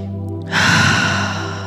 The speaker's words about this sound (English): Moving into your chest, breathing in and out of your chest, imagining the air coming in through the nose, moving into your chest, swirling around and coming back out your mouth.